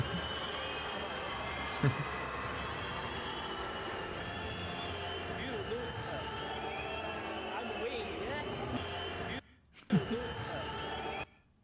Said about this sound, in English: Sun Yang promoted into the gold because Rapsis twitched on the start and therefore was disqualified, having touched the wall first. Oh, dear. He's now getting booed massively. Listen to this.